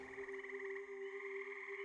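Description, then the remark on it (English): A steady chorus of frogs croaking, a continuous trilling drone with a fast pulsing rhythm, fairly faint, with no voices. “Frogs, loons.”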